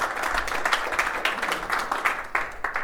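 An audience claps together in a steady, dense round of applause welcoming a group of three to the stage, many hands blending into a continuous crackling patter at moderate volume.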